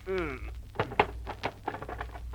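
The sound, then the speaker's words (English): A strained grunt gives way to a series of uneven wooden thunks and scraping jolts as a stuck drawer of an old trunk is yanked and forced open, the knocks coming irregularly and moderately loud. “Boss, this trunk is so old, half the drawers won't open.”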